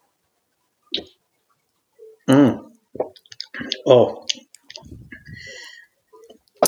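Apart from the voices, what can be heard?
sipping and swallowing beer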